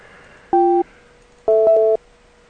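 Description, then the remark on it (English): Electronic telephone tones from a failing Skype call to a long international phone number: a short steady two-tone beep, a pause, then a longer beep that briefly breaks partway through, loud and clear with no voices. “So I am going to try to call his number, which, by the way, is a very long phone number because it's an international number.”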